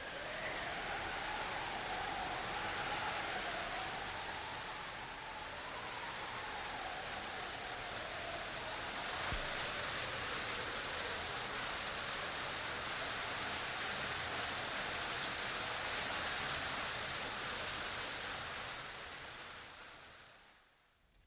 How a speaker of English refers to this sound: The storm rages more shrilly through space now, and far below is heard the thunder of the waterfall.